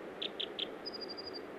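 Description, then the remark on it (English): An American dipper sings from its small perch: three quick, bright, evenly spaced notes, then a thin, high, rapid trill, all over a steady rushing background noise with no voices. “As my bird is doing again now, singing from its little perch.”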